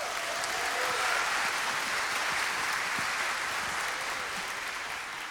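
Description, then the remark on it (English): A church audience claps steadily to celebrate baptisms, a dense wash of applause with some cheering mixed in, sustained at an even loudness for several seconds before easing slightly at the end. “And how great is it to say, as a church, every time we're cheering and clapping, we're not just excited that they've made that decision, although we are, but what we're saying is, like, we will come alongside you.”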